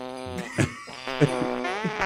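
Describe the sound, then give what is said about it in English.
Real recorded farts are played back in quick succession, buzzy and pitched like a crude tune, with a few sharper blasts punctuating the sustained tones. No one speaks. “These are all actual farts.”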